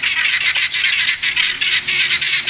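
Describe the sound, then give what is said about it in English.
Guinea hens under a carport call in a loud, harsh, rapid chatter of repeated squawking bursts, grating and high-pitched, going on without pause and without any talking. “They're under my carport making their guinea hen noise.”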